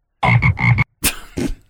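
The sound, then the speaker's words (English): A loud frog croak used as a sound effect for the radio station the Big Frog, 109.9: a quick run of three throaty pulses, then a short pause and two harsher, raspier croaks, with no voices around it. “Here's the latest from …. the Big Frog, 109.9.”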